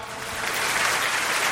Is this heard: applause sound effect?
yes